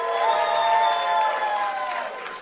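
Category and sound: crowd, audience applause and cheering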